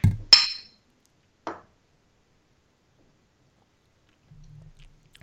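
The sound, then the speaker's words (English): A bright, ringing clink of glass beer bottles knocking together near the start, followed about a second later by a softer tap, then near silence with faint low rustling toward the end. “Did you clink the bottle?”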